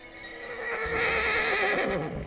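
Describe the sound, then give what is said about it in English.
A stallion whinnies in one long, wavering neigh lasting about two seconds, clear, with a few faint hoof clops underneath as it turns and trots down a lane and fades. “The horse locked eyes with Peggy, then it turned and trotted down the lane.”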